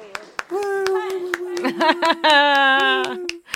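Hands clap in a steady, fairly quick rhythm while a long sustained vocal tone, like a held cheer or whoop, rings over them for most of the few seconds.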